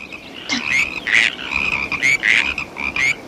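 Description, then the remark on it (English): A dense chorus of spring peeper tree frogs calling, with high, shrill peeps overlapping in rapid, pulsing bursts against a steady background of other calls. “They're peepers. Tree frogs.”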